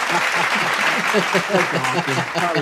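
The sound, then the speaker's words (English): A crowd claps steadily and densely for the whole stretch, a loud, even wash of applause with voices talking and calling out over it. “Yo, look, I need a clapping for that one.”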